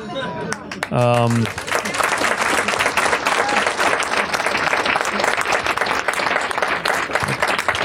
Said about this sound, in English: I'm going to note that as mild applause from an audience that surely includes some congressional staffers.